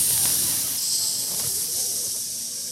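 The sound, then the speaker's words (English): A steady, loud hiss like steam escaping from a valve, continuous for the whole stretch with no pauses and no voices, slightly easing off toward the end. “So like steam escaping.”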